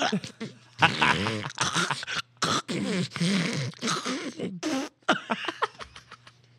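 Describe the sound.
A person imitates snoring and farting with their voice, making a loud string of buzzy, sputtering bursts and rasping snorts with short pauses between them.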